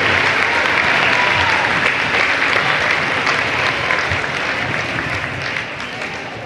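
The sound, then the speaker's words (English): A crowd claps steadily and loudly in sustained applause for the ladies' teams and the all-tournament team at Columbia Central High School, a dense wash of many hands that holds strong for several seconds before easing slightly toward the end. “Ladies and gentlemen, a big round of applause for these ladies' teams who fought hard to get where they are today.”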